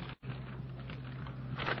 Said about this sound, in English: The sound of the flipping pages.